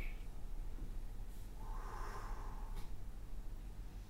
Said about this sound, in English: So you're breathing into the belly, so your belly's expanding as you inhale. And then as you exhale, you're pushing the breath down into the kidneys.